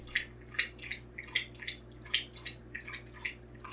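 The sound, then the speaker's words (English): A dog laps up water in quick, steady wet splashes, roughly three per second, over a low background hum, with no one talking. “I can see that the microphone's picking up the dog drinking water.”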